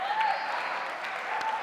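An audience applauds two people who agreed to do the readings, a steady, dense wash of clapping that holds at an even level throughout, with a few sharper individual claps standing out near the end.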